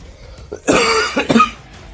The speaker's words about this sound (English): Don't know whether to leave the coughs in or not. I'm not coughing half as bad as I was before, but I might not want to see an overweight fat guy sweating and coughing a lot.